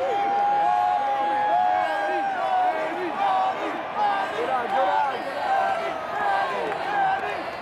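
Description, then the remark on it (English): A baseball stadium crowd at a freezing early April game cheers loudly and steadily with the bases loaded in a 4-4 tie in the bottom of the seventh, a dense roar of many overlapping voices with rising and falling shouts, sustained throughout without a break. “I just want you to hear this crowd.”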